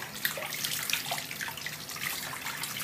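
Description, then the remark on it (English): Running tap water splashes steadily into a sink in a small bathroom, with irregular slaps and spatters as hands scoop and splash it onto a face to rinse it off, fairly loud, no voices. “You just gotta splash water and then, like, it mostly comes off when you dry it.”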